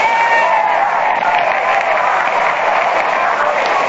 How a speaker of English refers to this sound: the first man to bat, a Cincinnati boy, gets a tremendous hand from the crowd. It's Big Bezo Lombardi.